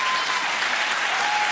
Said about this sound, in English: Let's give it, put your hands together. You know what? We're going to put you in class for clapping. You are the worst clappers today I have ever seen in my life.